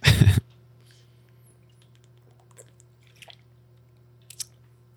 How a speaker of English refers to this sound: I'm gonna drink something.